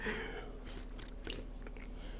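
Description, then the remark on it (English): Someone takes a sip of a drink: a few soft, wet mouth and swallowing sounds spaced out over a couple of seconds, quiet with no talking. “I need to take a sip.”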